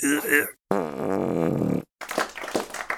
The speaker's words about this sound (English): Dude, you're not farting the alphabet. You're just farting.